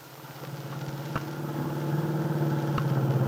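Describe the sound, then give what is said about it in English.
A car engine hums steadily as it drives toward a farm on a Sunday afternoon, its low rumble slowly building in loudness, with a couple of brief clicks or knocks cutting through. No one speaks. “with Aunt Mary on the seat beside her, is driving her car toward the Lane Farm on Willow Road”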